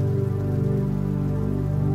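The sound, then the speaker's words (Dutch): Steady rain falls on a surface on a stormy night in a continuous, even patter, with a low sustained musical drone humming underneath. No one speaks. “Je verwondert je om de perfectie van de regendruppel in het idee dat één druppel als onbelangrijk zou kunnen worden gezien in vergelijking met een stormachtige nacht als deze.”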